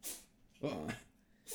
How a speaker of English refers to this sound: Bless you, Gato. Bless you, my boy.